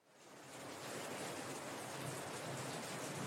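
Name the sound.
rain falling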